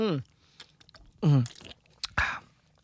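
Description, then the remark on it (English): Sipping and swallowing from a Buzz Ball canned cocktail, with small wet mouth clicks between two short voiced murmurs, ending in a breathy, satisfied exhale. “let's take another sip here, and then we'll give we'll get some ratings on this.”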